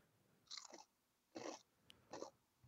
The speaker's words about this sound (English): It's got like a lighter crunch to it. I'm gonna say it's a potato chip of some kind. You'd be correct. Is it a Dorito? A Dorito's not a potato chip, you idiot. Corn. Yeah, it's made of corn.